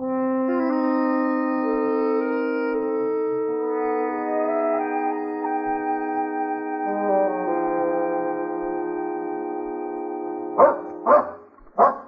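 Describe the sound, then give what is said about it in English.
Sustained orchestral music plays for most of the stretch, then a dog barks three times in quick succession near the end, sharp over the music. “That dog is definitely leading us somewhere.”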